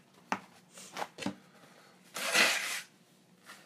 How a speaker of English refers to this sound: Hold on, I gotta blow my nose.